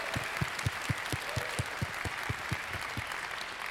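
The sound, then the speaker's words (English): Sustained audience applause at San Francisco Ballet for its members, a dense wash of many hands clapping at an even level, with a steady low thump pulsing underneath about three times a second. No one speaks. “So if you can join me in acknowledging and thanking and applauding all of our wonderful members who make this possible.”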